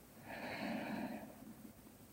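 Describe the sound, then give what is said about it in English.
A single slow, deep inhale through the nose during a guided breathing exercise, breathy, swelling for about a second before fading into near silence. No talking. “And breathing out, breathing in,”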